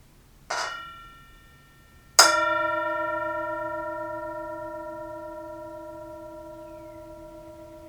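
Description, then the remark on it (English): A Tibetan singing bowl is struck twice, first a brief, softer tap, then a fuller strike that rings out with a long, shimmering tone slowly fading over several seconds, with no talking. “As always, we have the Tibetan bowl, the singing bell, and you are invited to enjoy the sound of the bell and enjoy this present moment.”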